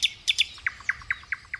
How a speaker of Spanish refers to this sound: ¡No! ¡No! ¡Otra vez no! ¡Esos odiosos pájaros van a volverme loca!